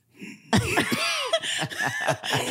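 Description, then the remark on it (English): A voice imitates a strained, choking cough, as of someone choking on a piece of meat and trying to cough it out: a sudden harsh burst followed by a run of gagging, sputtering coughs lasting a couple of seconds, fairly loud. “and I'm trying so hard to just like cough it out without making a noise.”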